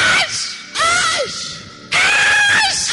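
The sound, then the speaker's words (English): A voice imitates Jesus screaming in pain as he is nailed to the cross: three loud, strained, wailing cries in quick succession, each rising and then sliding down, raw with no other sounds. “He screamed as they were nailing him.”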